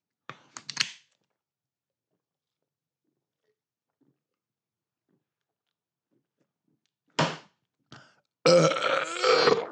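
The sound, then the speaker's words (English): A loud, long burp after shotgunning a beer rumbles out at the end, following a few short sharp sounds early on and a brief gap of near silence. “Oh, that was a terrible burp.”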